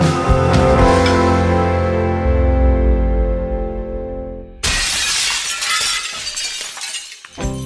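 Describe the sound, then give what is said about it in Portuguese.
A blender motor whirs steadily, then stops abruptly as a glass jar shatters with a sudden loud crash, followed by a few seconds of tinkling, scattering shards. No voices. “A fragilidade das jarras dos liquidificadores e a frequência com que elas quebravam sempre foram os problemas apontados pelos consumidores brasileiros.”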